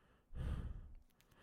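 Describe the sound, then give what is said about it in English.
A person voices one heavy, drawn-out breath, a loud breathy exhale lasting about half a second, imitating heavy breathing before trailing off into quiet. “Just heavy breathing noises.”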